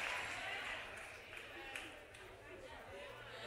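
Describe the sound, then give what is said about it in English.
Soft, dense clapping from a church crowd during a pastor's sermon, a steady wash of many hands that eases slightly in loudness toward the middle, with faint murmuring voices mixed underneath. “Notice how the claps start getting a little softer.”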